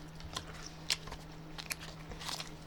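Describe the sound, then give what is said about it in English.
Chewing and biting on a stick of food eaten with its skin kept on, with several crisp crunchy bites and moist mouth sounds scattered irregularly over a faint steady hum, no talking. “And you could chew on it longer, and it's healthier, isn't it? You keep the skin on.”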